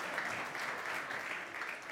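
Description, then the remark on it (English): A crowd claps steadily throughout, a dense, continuous patter of many hands at moderate volume, with no voices over it. “I wasn't going for applause, but that's all right.”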